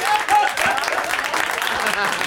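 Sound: clapping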